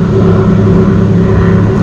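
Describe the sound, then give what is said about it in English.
A speedboat passing by a beach drones steadily and loudly, a low humming engine tone with a rough, buzzing edge that holds constant throughout, with no voices present. “I'm gonna wait till this speedboat passes.”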